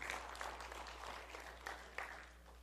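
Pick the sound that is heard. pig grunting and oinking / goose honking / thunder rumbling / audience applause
audience applause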